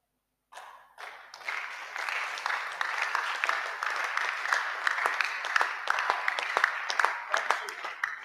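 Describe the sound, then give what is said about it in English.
A church audience bursts into sustained applause, many hands clapping in a dense, crackling wash that swells quickly after a brief silence and holds steady throughout. “The way you are clapping, I don't know whether you are in the house of God at all.”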